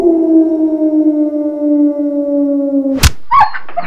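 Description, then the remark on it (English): A coyote at a petting zoo lets out one long, steady howl that sags slowly in pitch for about three seconds, then breaks off with a sharp crack, followed by a few brief yips. “that's totally the evil coyotes over at the Sebastian Shaw Evil Critter Petting Zoo”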